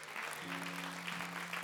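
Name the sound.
audience hand clapping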